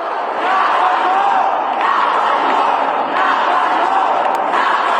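A protest crowd of hundreds shouts and chants in unison for gun reform at the Tennessee Capitol building, a loud, dense wall of voices with rhythmic surges, continuously throughout.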